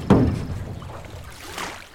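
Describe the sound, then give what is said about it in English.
A small boat moves across calm lake water, with a soft splash at the start and gentle lapping and swishing that swells again near the end. No one speaks. “Look at that lake. Is that a boat? It is a boat. Hop in.”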